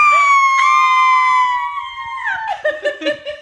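A loud, piercing scream held steadily for about two seconds, then sliding lower and breaking into short, choppy bursts that sound like laughter.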